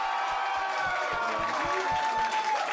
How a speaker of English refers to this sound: Applaud if you accept pineapple on pizza. They're vocal. They're vocal.